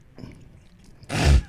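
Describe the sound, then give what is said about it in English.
A single loud, noisy slurp lasting under half a second as someone sips a Capri Sun drink through a straw, after quiet low rustling and followed by a brief soft thump. “He sips.”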